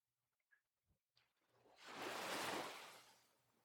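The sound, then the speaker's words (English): Gentle ocean waves swell and wash up onto a sandy beach, rising into a broad hiss of surf before slowly fading, with a few faint clicks and rustles just before each wave arrives. “Sleep by the Beach Meditation with Gentle Ocean Waves”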